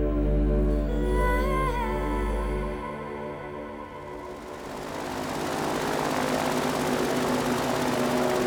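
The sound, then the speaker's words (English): A boat engine drones loudly, a steady harmonic hum that gives way to a rougher, rushing roar as it churns on. No one speaks. “Anyone ever tell you you're a terrible boat driver?”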